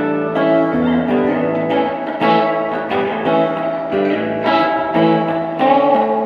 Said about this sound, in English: But it's really cool. That's just the reverb that's built into it, which is cool. I like it by itself.